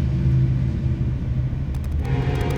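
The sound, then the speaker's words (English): A passing train: a loud, steady low rumble with droning mechanical tones, joined near the end by brighter rattling and faint rhythmic clicks. No one speaks. “thank you, train. Take a moment for the train.”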